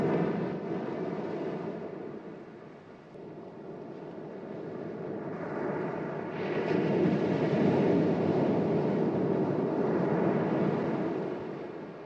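Steady roar of ocean surf with no voices, the broad wash of waves swelling louder midway, holding, then easing off slightly toward the end.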